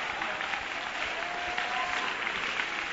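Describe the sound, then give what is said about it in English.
A crowd claps hands in worship of the Lord at a religious service, a steady, dense wash of applause, loud and continuous for the whole stretch, with no voices standing out above it. “Clap your hands again and worship the Lord.”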